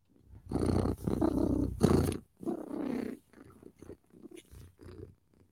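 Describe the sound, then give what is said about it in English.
A person imitates a cat's purr, producing a few long, rough rumbling bursts followed by several shorter, softer ones with brief pauses between them. “I'm happier when I'm purring. That's like my happy time. I love to purr.”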